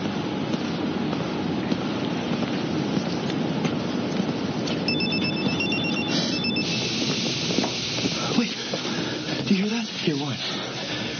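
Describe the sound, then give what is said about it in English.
A phone rings briefly with a short, high electronic trill, heard amid a steady hiss of background noise and faint, indistinct voices. “sounds like a phone ringing.”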